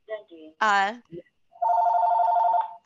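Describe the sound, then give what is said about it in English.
A telephone rings in one loud, steady electronic burst lasting about a second, right after a moment of someone's voice. “Let me turn this phone off. Let me turn it off.”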